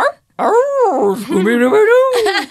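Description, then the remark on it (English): A man's voice imitates a dog, giving a drawn-out growling, whining bark that rises and falls in pitch. It is loud and continuous for about two seconds after a brief pause. “Are you my dog? Ruff!”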